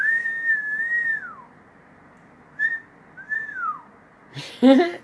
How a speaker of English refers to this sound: I meant to do the wolf whistle